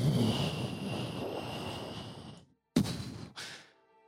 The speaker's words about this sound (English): as the gates close behind you.